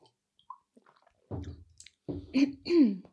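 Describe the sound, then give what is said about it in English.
Fairly loud throat clearing by someone with something stuck in their throat: a short rough burst, then two or three strained, voiced rasps in quick succession after a pause. No one speaks. “God, I've got something stuck in my throat.”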